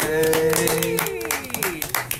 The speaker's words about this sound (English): Maybe a round of applause, everybody.